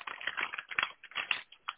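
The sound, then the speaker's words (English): Busy shuffling: a quick run of dry, clattery scrapes and taps in irregular bursts, fairly quiet, with no one talking. “I hear some shuffling.”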